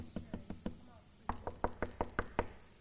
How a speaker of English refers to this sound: Jesus is knocking.